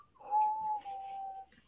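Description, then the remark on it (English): A person whistles one long, steady note lasting about a second, holding nearly the same pitch throughout, moderately loud over faint background noise. “Let's not whistle.”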